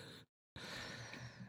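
A breathy yawn, a drawn-out airy exhale broken by a brief silent pause, fairly soft, with no talking.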